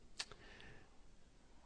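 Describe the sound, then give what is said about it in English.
A single crisp mouse or remote button click, followed closely by a softer second tick, then quiet room tone. The clicks are faint, with no one speaking. “Just kind of keep clicking.”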